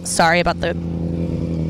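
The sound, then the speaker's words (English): A man rides a motorcycle passing by outside, its engine a low sustained rumble running under a brief burst of voice at the start and continuing to the end. “Sorry about the man on the motorcycle.”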